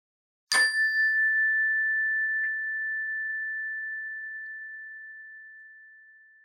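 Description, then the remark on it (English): A single meditation chime is struck once to begin a meditation, giving a bright, clear metallic tone that rings out and slowly fades over several seconds in otherwise quiet surroundings. “We will begin the meditation with the ring of the chime and end the meditation with the ring of the chime.”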